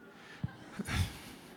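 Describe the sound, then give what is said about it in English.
A dog snorts and breathes: two short sniffing huffs followed by a longer, breathy snort, all fairly quiet with no talking. “I realize some people are afraid of dogs.”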